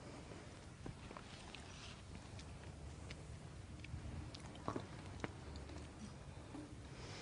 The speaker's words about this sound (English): And wait until everyone has finished their process of chewing before you begin the reporting.